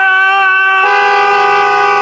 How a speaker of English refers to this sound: they're over there honking the horn and they're yelling and they're having some domestic dispute.